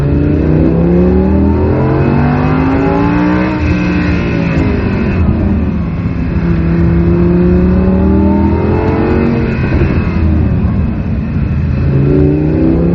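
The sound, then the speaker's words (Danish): An Audi R8 sports car engine revs loudly, its pitch climbing and falling in repeated sweeps as it accelerates through gears, a continuous throaty roar with no talking. “Ej, hvor lyder det godt.”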